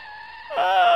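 A loud, high-pitched tire squeal of hard braking, a sustained screech that swells sharply after a brief lead-in and holds, with a strained, slightly wavering tone.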